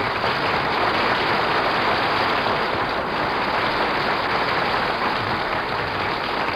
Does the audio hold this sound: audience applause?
yes